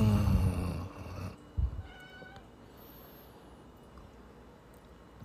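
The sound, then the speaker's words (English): A cat lets out a loud, drawn-out meow, followed by a brief thump and a few faint, quieter tones fading into low background noise. “I think the cat even chimed in there for a second.”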